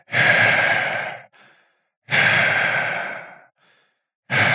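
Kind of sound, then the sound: vocal imitation, voice imitating heavy breathing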